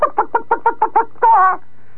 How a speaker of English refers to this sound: And I could hear the chicken go, bah, bah, bah, bah, bah, bah, bah.